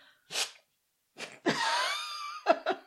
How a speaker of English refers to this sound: Can I blow my nose? You can blow your nose, not into the microphone, though, please.